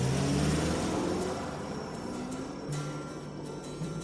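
A car engine starting up and running at a steady, fairly loud level, its low hum rising in pitch partway through as it revs, with no voices.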